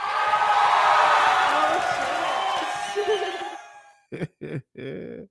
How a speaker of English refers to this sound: Yeah, we gave my special guest a cheering round of applause for coming through on time, not fucking up your boy time.